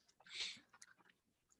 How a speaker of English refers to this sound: since you're eating Taco Bell